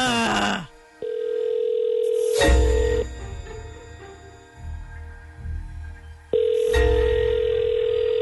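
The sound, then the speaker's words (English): A steady telephone dial tone hums for a couple of seconds as a caller phones a man back, cuts off with a clatter, then returns after a muffled, rumbling pause, like a phone line ringing through. “Let's get him back on the phone.”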